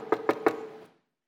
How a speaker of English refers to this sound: And my wife isn't here. My kids aren't here, so I don't know who's knocking. I'm like, hello?